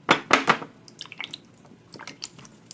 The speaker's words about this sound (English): In the rainy night on the road. The rain drips down onto the window of the school bus.